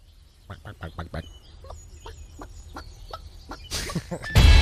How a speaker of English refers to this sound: I love the chickens. It's always a cool mechanic.